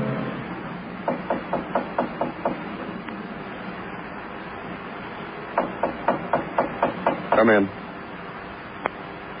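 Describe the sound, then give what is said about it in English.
Someone knocks on a door in two quick runs of about six sharp raps each, separated by a pause, then a single tap, over a low background hum. “Well, I knocked you.”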